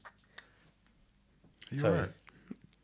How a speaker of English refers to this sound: What's wrong with you? Sorry, go on, sorry. I was sipping my wine.